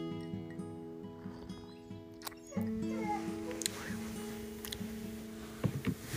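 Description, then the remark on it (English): Dogs whine and whimper in drawn-out, tonal cries, broken by a few sharp barks or yips at irregular moments. The sounds are moderately loud. “Lord, thank you for spastic dogs.”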